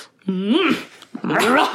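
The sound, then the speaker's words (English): Two drawn-out dog barks, each a loud, pitch-bending yelp lasting about half a second, separated by a brief pause. “Well, with that bark, we will leave you.”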